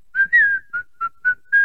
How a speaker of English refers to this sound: So I woke up, I will say that I wake up pretty much 99.9% of the time, fucking like whistling, you know.